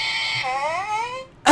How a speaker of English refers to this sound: So it would be like me yell, crying, laughing, saying, I just farted. Is this what it would sound like?